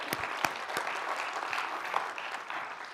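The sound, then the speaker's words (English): An audience breaks into steady applause celebrating a cancer tumor fully removed by a single surgery, a dense wash of many hands clapping at an even level for a few seconds, with a few sharper individual claps standing out at the start. “The tumor, yeah, we can clap for that.”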